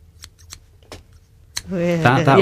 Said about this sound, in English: That would get me. So really? Imagine, like the sound of scissors. Imagine if that was happening quite frequently